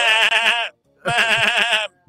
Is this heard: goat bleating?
yes